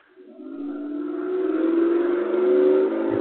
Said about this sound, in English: And she was... Well, almost hit by a truck.